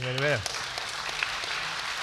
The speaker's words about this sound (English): When I saw that, I applauded, so you can or you don't have to.